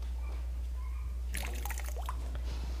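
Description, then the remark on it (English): Water from the River Jordan is poured into a basin for a baptism in a short splashing trickle that starts partway through, moderately loud, over a low steady background hum. “So I'm going to pour some into where we're going to be baptized.”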